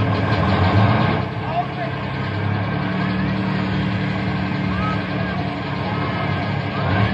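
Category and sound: vehicle, bus engine idling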